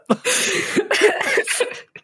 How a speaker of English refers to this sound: … like coughs a little